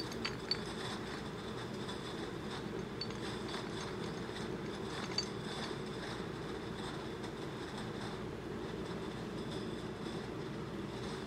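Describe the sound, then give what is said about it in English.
A steady mechanical rumble of a conveyor belt moving at a steady pace behind a glass wall at the Odor Institute, with occasional faint, bright clinks of glass dropper bottles knocking together as they round the turns. No voices are heard. “Behind, a glass wall enclosed a conveyor belt that was moving along at a steady pace.”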